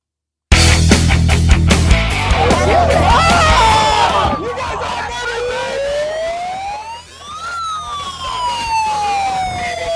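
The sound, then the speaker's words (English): A loud, dense crowd of protesters, in footage of Alex Stein among them, shouts and screeches over one another for several seconds, then a siren wails up and down in the background as the yelling thins out. “The screeching is at an all-time high for no reason.”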